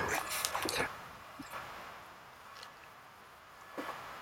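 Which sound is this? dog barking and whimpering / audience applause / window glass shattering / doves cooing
dog barking and whimpering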